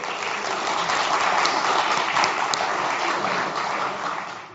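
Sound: audience round of applause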